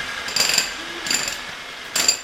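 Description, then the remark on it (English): Short, whining bursts of power tools as workers sand and drill in a school being readied to open in Kharkiv, coming in three roughly evenly spaced spurts, each less than a second long, at moderate volume against a quiet background. “Some install lights, insulation, and wheelchair-accessible ramps. Others sand and drill.”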